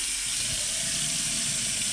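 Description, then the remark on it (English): A tap runs steadily as someone wets their face before washing with a facial cleanser, producing a continuous bright rushing hiss of water with a low splashing undertone, no voices, holding an even level throughout. “Now wet your face.”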